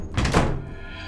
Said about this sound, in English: walking through the hallway when all the doors slammed shut at once.